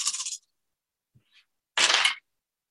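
Six dice clatter sharply in two short bursts as they are rolled for a game check, with a couple of faint small clicks in the quiet gap between them. No one speaks.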